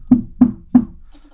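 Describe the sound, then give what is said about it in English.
Three solid knocks on the wooden door of a house, evenly spaced, each a dull thud with a short ring, followed by quiet. “You knock on his door.”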